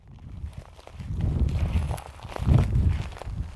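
Footsteps crunch through dry, sparse alfalfa in a farm field in central Arizona, a steady walking rhythm of rustling, brittle crackles with heavier low thumps as each foot lands. No one speaks.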